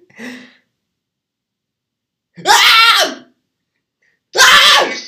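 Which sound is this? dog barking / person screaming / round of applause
person screaming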